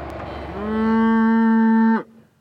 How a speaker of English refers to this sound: We're coming out into this field. It's got about 250 mother cows.